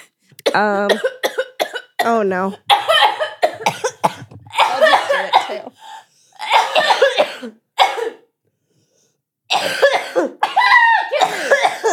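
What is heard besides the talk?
people coughing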